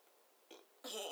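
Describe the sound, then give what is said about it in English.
A loud burp that brings up peanut butter and jelly: a brief soft gulp, then a stronger rasping belch that runs to the end. No one speaks. “I just burped up some peanut butter and jelly.”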